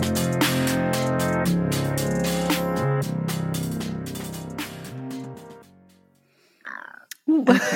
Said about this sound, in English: That wasn't a burp. That was just like some kind of like air bubbles. No, it really wasn't a burp. You know when like your like throat makes that weird gurgling sound? That's what that was. I promise.